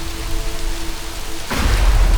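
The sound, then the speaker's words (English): Steady, dense rain hisses throughout, coming down hard, then about halfway a deep roll of thunder swells in loud, rumbling beneath the downpour until the end, during a storm with lightning. “I can't see much until the lightning strikes, but something is out here.”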